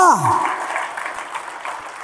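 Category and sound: crowd, audience applause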